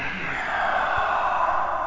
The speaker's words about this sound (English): Full breath in, full breath out. Inhale, exhale.